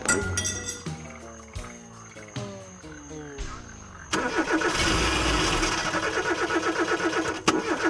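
A dense chorus of frogs croaking in a Florida swamp on a sunny day, in rapid, rhythmic pulses. It fills the second half, loud, after the whining mechanical sound of a car that winds down and sputters to a halt.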